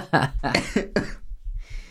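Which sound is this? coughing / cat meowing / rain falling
coughing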